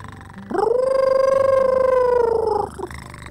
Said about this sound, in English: I call it a wolf cat. It's part wolf, part cat. And listen to it. It purrs and then it howls like a wolf, but it sounds different. See?